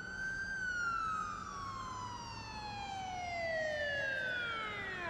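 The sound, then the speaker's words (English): A loud police car siren sweeps past as several police cars come around the block and go into an underground parking garage, its wailing tone sliding steadily lower as it goes by, with a low rumble of traffic underneath and no voices. “you glance out at just as these cop cars come roaring past you, come around the block, and you can like hear the tone shift as they go into that underground parking garage.”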